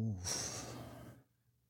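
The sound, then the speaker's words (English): A man breathes heavily into the microphone: one loud, airy exhale rushing into the microphone for about a second, with a brief throaty edge at the start, then quiet. “He breathing into the mic.”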